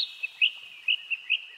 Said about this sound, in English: Sitting in a tree along the river was a bird. The bird wasn't doing much, just singing to himself as usual.